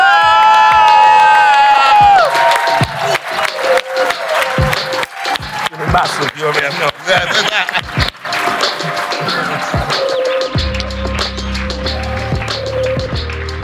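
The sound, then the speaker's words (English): An audience bursts into loud applause and cheering to welcome a New York-based MC to the stage, with whoops and high shouts over dense, steady clapping that carries on for several seconds before softer music-like tones take over near the end. “Please give a warm welcome and a round of applause to”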